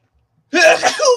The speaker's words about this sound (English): Gosh, goddamn, you're so excited. You did a bad sneeze. My God, dude's fucking going crazy. You got to spell it. Sorry, it was awkward as shit. No. I'm excited. Probably got a nose hair stuck in there from trimming that sucker earlier.